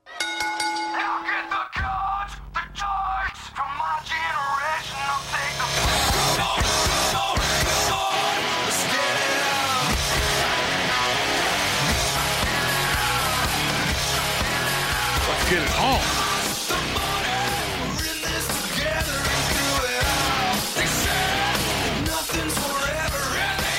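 A loud, dense punk-style song plays with harsh screamed vocals, with lyrics about middle-class parents and the suburbs, over driving guitars and pounding drums. It holds full intensity for the whole stretch after a brief, sparse opening.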